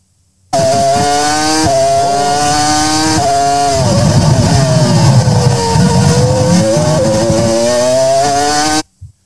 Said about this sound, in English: Wowee. Can I guess what car that was? You know, because you suggested to me, but sure. That was a V10.